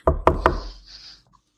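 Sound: knocking on a door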